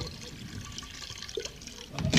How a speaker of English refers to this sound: Okay, Polly, I'll give you a little. Here's a cognac. I'll pour a little into your dish.